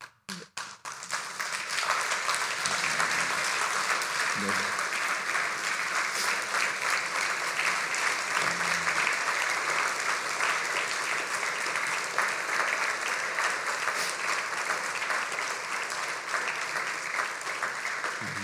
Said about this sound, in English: Okay. I hope you're not clapping because we're leaving.